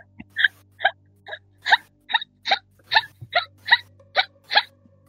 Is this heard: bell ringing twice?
no